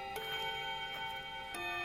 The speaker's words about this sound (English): That's the late bell.